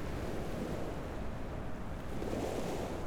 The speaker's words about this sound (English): I listen to the frothing and gushing of the water against the hard earth and smile.